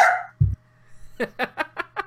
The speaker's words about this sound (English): Enter dogs. but we live in apartments, it happens, guys.